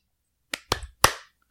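Three sharp hand claps in quick, uneven succession, crisp, each snapping out and decaying briefly into silence, with no talking.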